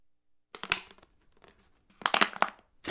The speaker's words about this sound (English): No, it sounded like you're crackling like a plastic, like a liter bottle of Coke after you slammed it. You're crackling it.